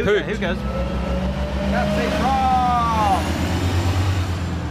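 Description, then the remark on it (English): A heavy bus engine rumbles steadily, with a brief tonal whine rising and falling partway through, as the bus switches on its not-in-service sign. Faint voices can be heard in the background. “Look, all the people are disappointed because they put the not in service sign up.”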